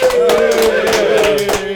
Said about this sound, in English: Before I get into the introductions of them, let's give ourselves a hand clap. We got a full room up in here.